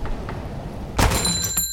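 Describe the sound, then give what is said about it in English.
A door swings open with a single loud bang partway through, followed by a short metallic ringing that fades away. Before it, only a low steady hiss, with no voices. “Speaking of humdingers, there in the doorway, with a whoosh and a bang, appears a lovely and statuesque redhead, frozen like a photo, the look of surprise on her open lips.”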